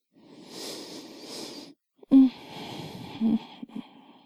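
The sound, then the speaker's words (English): Slow breathing: a long airy inhale, a brief pause, then a longer, slightly raspy exhale, heard alone with no talking. “Keep breathing. I like your breathing.”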